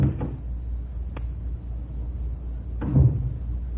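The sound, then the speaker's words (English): The door of a small guest-house cottage is fumbled with: a few scattered clicks and rattles of a latch, then a fuller knock and scrape as it swings open, over a low steady rumble. “Lydia showed up while I was still fumbling with the door.”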